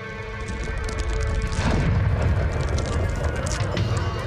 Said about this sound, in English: Something's going on outside. Oh. Look, at the end of the wharf, that ship crashed into the dock.